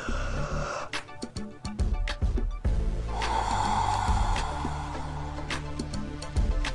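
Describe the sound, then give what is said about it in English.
A person gives a few exaggerated fake yawns as a breathing exercise to engage the belly, drawn-out breathy vocal stretches with a rising, open-mouthed tone, broken up by small clicks and breaths, with no talking. “You know, so just go ahead and do a few fake yawns.”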